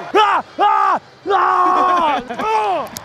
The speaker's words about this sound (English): Then I yell. I get myself more hype. That's what it sounds like in my head.